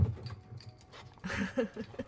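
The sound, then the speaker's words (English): Dogs' paws patter closer across a coffee shop floor in a quick, uneven flurry, growing louder after a quiet start, with a faint whine or snuffle mixed in. No one speaks. “Please tell me that's Angelo's dogs.”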